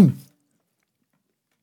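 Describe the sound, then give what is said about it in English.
A single short, throaty cough bursts out after a person eats something spicy and it goes down the throat too fast, a quick harsh expulsion that fades within a fraction of a second, followed by silence. “It went down my throat, though, because I went too fast.”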